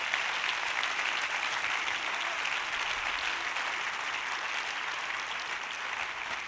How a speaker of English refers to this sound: Give the Lord one more hand clap and come, musician.